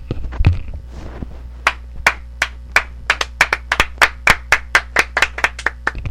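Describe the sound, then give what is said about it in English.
A single person claps steadily, about a dozen sharp hand claps in an even rhythm, preceded by a brief burst of rustling and handling noise. “I applaud you.”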